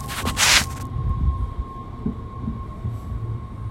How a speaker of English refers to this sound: There are still trains coming and going, but not as much as they used to.